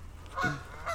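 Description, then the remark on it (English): Angry geese honk twice as they come back to shore after a dog, Luna, swam out near them, a loud nasal call followed by a shorter, fainter one, heard clearly over a quiet outdoor background with no talking. “The geese are still very pissed off, but they're actually coming back to shore for her, I think.”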